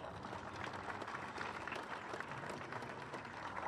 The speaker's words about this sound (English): They're doing a great job. We should all give them a round of applause to the committee.